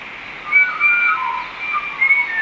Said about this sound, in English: So that's that high-pitched call there that I think we're listening to. Could be a pied currawong. I suspect also that it could be a pied currawong. They have lilting sounds that often blend between notes.